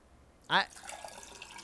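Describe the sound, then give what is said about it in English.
A short splash of water into a glass, its tone rising quickly for a moment before fading into quiet background noise. “This was the time to pour this glass of water.”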